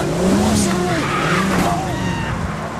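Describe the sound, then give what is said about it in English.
Big Boss Man's car pulls away with tires squealing and skidding, loud, the engine roaring steadily throughout while indistinct voices sound faintly beneath the noise, as Big Show tries to stop the car by jumping on it. “So then Big Show attempts to stop Big Boss Man's car by jumping on it.”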